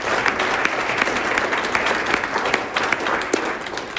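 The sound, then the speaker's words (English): A room full of people claps steadily for an event's organizing committee, a dense, sustained wash of many hands with scattered sharper claps standing out, loud throughout. “So just a round of applause for the whole committee.”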